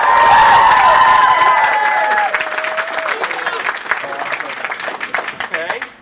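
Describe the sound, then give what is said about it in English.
A live audience cheers and applauds loudly to vote on a choice put to the crowd, with whoops and high shouted voices over dense clapping that sustains throughout and tapers slightly toward the end. “All right, so we're gonna put it to the crowd.”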